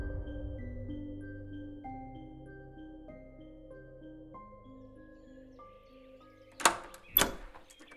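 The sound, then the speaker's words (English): The front door of a musty house opening: after a stretch of low, sustained droning tones, two sharp clunks sound about half a second apart near the end, the latch and door swinging. “The front door opened and the real estate agent led Frank and Helen Morgenstern into the vestibule”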